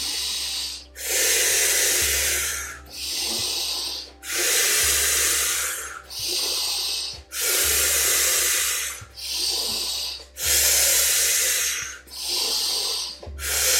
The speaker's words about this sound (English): Keep going, keep staying with that breath. We'll be here for about 15 more final rounds. You guys are almost there. You're almost at the finish line. Keep going. Beautiful. Just a few more rounds here. Breathing in and breathing out.